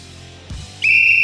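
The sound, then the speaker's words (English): A single loud, piercing whistle blast kicks in after a brief low rumble and holds steadily to the end, with no talking. “Whistle us in.”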